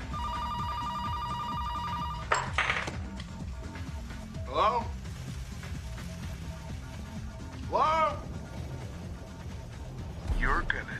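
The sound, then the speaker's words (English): A telephone rings with a steady, bright electronic tone for about two seconds, followed by a few short, rising and falling chirpy sounds over a low, rumbling background, in a film scene mocking Scream where the character Parker receives a call from the killer. “We're definitely mocking Scream with this next bit because Parker receives a phone call.”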